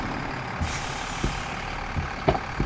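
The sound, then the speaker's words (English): A heavy truck rumbles at low speed as it downshifts and pulls to a stop at a roadside in the rain, a broad hiss of air brakes rising over the engine as it slows, with a few dull knocks and clunks from the gears. No voices. “switched lanes and began downshifting, pulling to a stop next to what appeared to be a young woman.”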